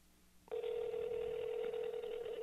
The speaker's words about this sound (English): It's ringing.